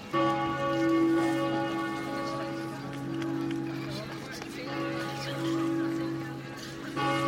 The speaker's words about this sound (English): Well, later on, a more pleasing sound permeates throughout the city, the bells of Fulda Cathedral.